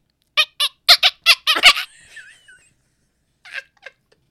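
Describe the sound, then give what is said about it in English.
A voice imitates a dolphin: a quick run of sharp, loud clicking bursts slides into thin, high squeaky whistles, then a couple of short clicks return after a pause. “He telepathically speaks to a dolphin, and the dolphin's like, K-k-k-k!”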